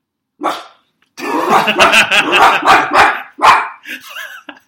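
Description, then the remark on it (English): A person loudly imitates a dog, letting out one short bark followed by a long run of rapid, growly barks and yips into a held-out microphone in an office, with no other sounds around. “I'm really good at dog barks.”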